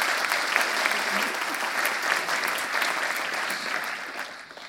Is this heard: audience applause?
yes